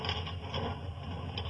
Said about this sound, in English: Now, if you'll help me draw the bars, Watson.